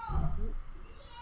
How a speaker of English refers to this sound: I apologize for that. That's my mom cheering for the Giants, so I apologize for that.